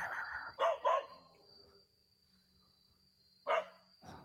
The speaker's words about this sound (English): The dog aggressively growls and barks at something Yama can't see.